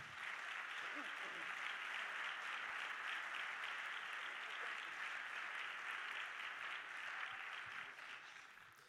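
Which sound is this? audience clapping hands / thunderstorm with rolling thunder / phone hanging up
audience clapping hands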